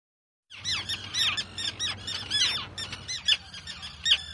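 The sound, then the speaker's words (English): A dense chorus of seabirds, terns, squawking and shrieking over one another, with sharp overlapping calls repeating continuously and loudly, as if from a crowded colony on islets off the coast, with a low rumble beneath. “Now, these birds, they all know you, but they never met me. Are they a little suspicious?”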